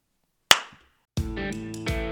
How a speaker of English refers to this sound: One clap is what we need.